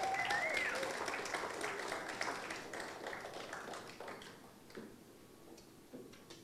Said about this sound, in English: Can we give our band a massive round of applause?